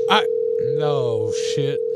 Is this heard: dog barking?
no